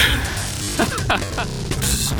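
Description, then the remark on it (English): A steady electrical buzz with a low hum underneath, broken by crackling bursts of static that flare up and fade over a couple of seconds, fairly loud, from an induction coil sending about 10,000 volts into the back of a boombox. “It made a really gratifying kind of buzzing, crackling noise.”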